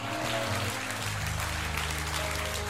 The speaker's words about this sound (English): Give the Lord a great hand clap for America. Would you do that? Amen.